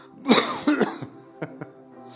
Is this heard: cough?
yes